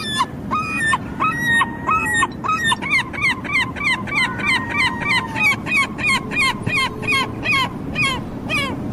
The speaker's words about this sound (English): That's the real McCoy. That's the herring gulls themselves.